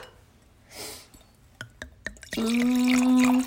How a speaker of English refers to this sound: We're pouring wine. Day drinking again.